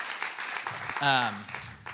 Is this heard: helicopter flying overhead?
no